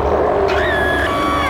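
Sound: dragon roar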